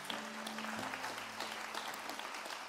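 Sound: audience applauding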